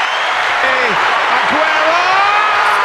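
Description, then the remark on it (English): An applause sound effect played on a show for Freedom Day, July 19th: a steady round of applause, dense and loud throughout, with many hands clapping at once and a few whistle-like cheers rising over the noise. “I'm hitting a round of applause again.”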